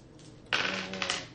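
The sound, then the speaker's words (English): Dice clatter and tumble across a hard surface in a brief rattling burst, with a couple of sharper clicks near the end as they settle. No voices. “Sharp dice. Yep. 63 out of 75.”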